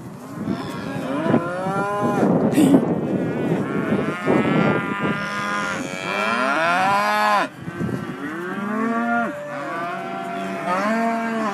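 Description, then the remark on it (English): Several cows moo loudly, their long, overlapping calls rising and falling one after another for the whole stretch, with a faint breath of wind in the background. “Oh, that's made my day, that's those cows.”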